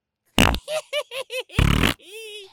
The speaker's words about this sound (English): That's just stop pressing the fart button. No more fart button. That was a little weird. Yeah, no more fart button. I turned off the fart machine.